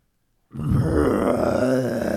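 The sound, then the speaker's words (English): A person imitates a bear's growl with a deep, rough, sustained rumble that starts abruptly after a brief silence and stays loud and gravelly for nearly two seconds. “Yeah, like a bear growling, like it's about to kill you. Can you do the growl so we can edit it in?”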